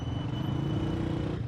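A motorcycle ridden across a bridge on a street during the day drones steadily throughout, a low rumbling hum with a faint high whine above it, fairly loud and unbroken, with no voices.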